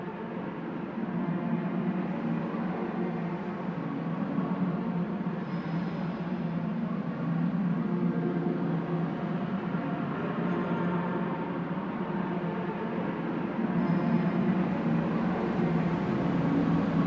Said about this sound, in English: And I can't hear any people or any birds or any bells. Sound is a totally enveloping experience. Yes, it's predominantly the traffic noise and the aircraft that you hear. We're immersed in the sound.